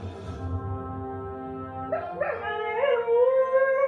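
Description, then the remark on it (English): A dog howls in long, drawn-out tones that rise and waver, growing louder toward the end. The sound is steady, with a low sustained hum beneath it and no talking. “This is the perfect dog.”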